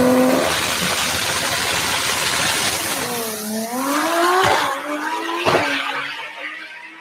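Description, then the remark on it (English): A car engine revs loudly with rising and falling pitch while tires squeal, punctuated by a couple of sharp bursts, continuous with no talking. “I don't need my car to go that fast, but I do need my car to shoot fucking flame out of some tube that's off to the left of the hood.”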